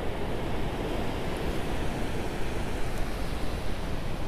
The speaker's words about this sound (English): Okay, now we got some waves coming in.